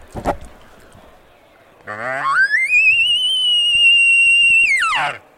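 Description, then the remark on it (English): A mouth-blown elk bugle on a diaphragm call, with no tube: a low raspy start climbs into one long, thin, high whistling note that wavers slightly, then drops off abruptly, sounding tinny and shrill. “That's not a very, I mean, it sounds more like a wounded coyote call.”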